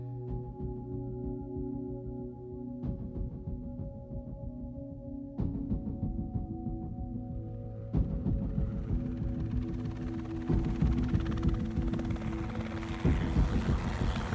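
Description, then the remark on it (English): A steady helicopter drone with a low throbbing rotor pulse and tonal engine hum, broken by a few sharp clunks, as a rushing, windy noise swells louder in the second half. “My eyes started burning the moment the helicopter door slid open.”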